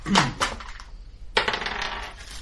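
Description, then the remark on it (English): Dice for a survival check in a tabletop game clatter across a hard tabletop in two sharp bursts, the second one rattling and tumbling for about a second before settling, landing on 19. No voices are heard. “19 on the dice.”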